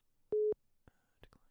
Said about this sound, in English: Sorry, everybody. There was a spammer calling my fucking cell phone as we were recording.